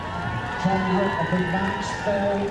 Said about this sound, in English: You can hear the cheers at the finish.